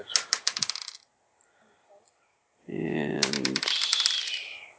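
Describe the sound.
Dice are rolled for an intuition check, giving a quick burst of hard little clatters as they tumble and rattle across a table, one die falling off, settling within about a second, followed after a pause by someone speaking.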